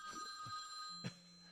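household object, telephone ringing

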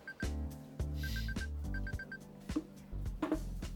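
signal or alarm, phone ringtone chime

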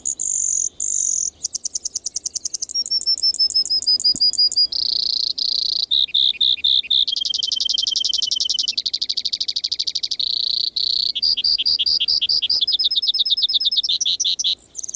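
bird, brewer's Sparrow song

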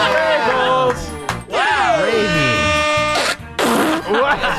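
human body sound, fart

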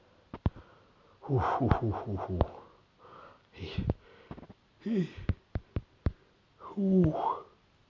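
human body sound, big yawn

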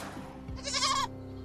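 animal, goat bleating

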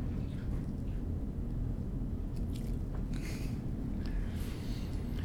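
animal, dog chewing

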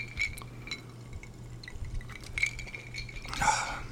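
household object, glasses clinking

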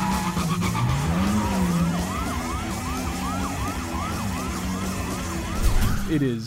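vehicle, movie car chase

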